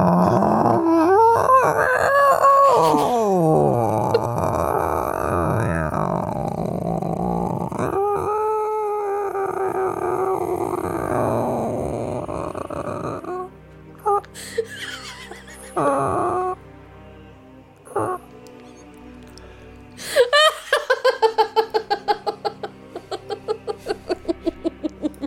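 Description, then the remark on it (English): A voice imitates a long, creaking door swinging open: drawn-out, strained groans that waver and slide up and down in pitch, broken by short pauses before a final squeaky stretch. “Does anything come rushing up towards the opening upon that loud and elongated crinkle of a swing?”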